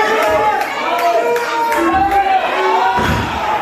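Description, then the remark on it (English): A wrestling crowd chants in unison with rhythmic clapping, a loud, steady wall of voices, with sharp claps cutting through the roar. “I'm feeling the world's worst pain and I'm not hearing, as I'm feeling this pain, I'm not hearing the crowd chanting holy ass.”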